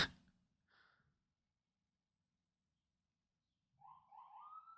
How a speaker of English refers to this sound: Oh my God, the ambulances today. I'm sorry, everybody. We're not hearing it as much. Well, I'm not hearing it as much. Hopefully they're not coming through. It's just police sirens and ambulances where they want to go through